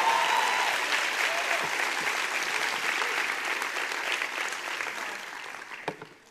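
A crowd claps steadily in a dense, sustained burst of applause that slowly thins and fades toward the end, with a few last scattered claps.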